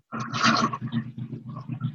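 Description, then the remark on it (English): A loud, harsh cough bursts out at once, then trails into a couple of rough, lower throaty rumbles, with no talking alongside. “Sorry, I had to cough.”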